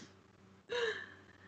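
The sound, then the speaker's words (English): A single short, raspy snore imitated by a voice, rising suddenly out of near silence and trailing off into a soft breathy hum, moderately loud. “Occasionally she lets out a snore.”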